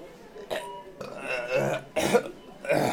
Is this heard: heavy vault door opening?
no